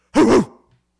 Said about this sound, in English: Making myself cough over here.